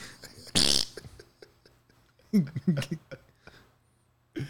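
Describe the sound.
A voice imitates a fart as the sound a Sharkcoin cryptocurrency cash register would make: a short, noisy blast followed by a few buzzy, sputtering bursts, fairly loud, with brief quiet gaps between them.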